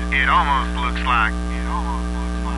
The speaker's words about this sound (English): Are you seeing this? I must be getting interference.